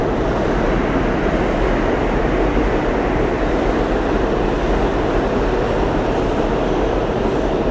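Subway trains, including the A train, roar loudly and steadily through a station, a dense rumbling clatter that fills the whole stretch without fading. No voices are heard.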